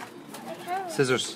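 A short burst of soft, throaty pigeon cooing, mixed with other murmuring vocal sounds, ending in a slightly louder, brighter call.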